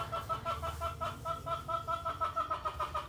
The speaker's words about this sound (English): Damn. That's the ducks.